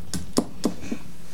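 Four evenly spaced taps on a phone or microphone, sharp, each a short dull thump over a quiet background with no voices.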